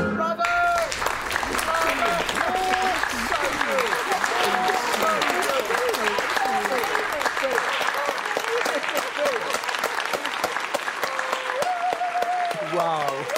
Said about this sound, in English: Okay, ladies and gentlemen, I'm so sorry to cut the applause short, but if you could just return to your seats, that would be fantastic